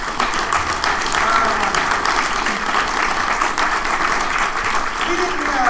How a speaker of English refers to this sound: My wife is here. My wife is here. Let's get applause for my wife.